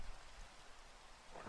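Steady rain pours down in a dense, continuous hiss, with a low rumble of thunder underneath. No voices, just the constant wash of a downpour.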